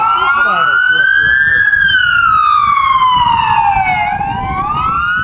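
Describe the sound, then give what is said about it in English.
A loud police siren wails, its pitch sweeping slowly up and down, over a low rumble of traffic with faint voices underneath, drowning out the chief of police as she speaks to the press about a shooting. “This is the chief of police here, …, but she's being drowned out by the sirens.”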